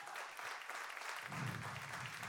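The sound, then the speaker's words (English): A church audience claps for the church staff in a dense, steady wash of applause that holds level throughout, with a low murmur of voices rising underneath in the second half. “Clap it up.”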